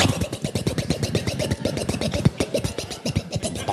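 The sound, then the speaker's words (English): A ski boat engine starting up, chugging with a rough, steady rhythm of rapid pulses that holds at an even loudness throughout. “I'm going to start up the boat.”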